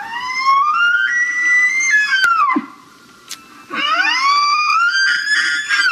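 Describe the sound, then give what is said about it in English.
Two long elk bugles, each a high, reedy whistle that climbs and holds with rich overtones before sliding down, separated by a short quiet gap. No talking. “Just to remind you, because I can, this is what an actual elk sounds like.”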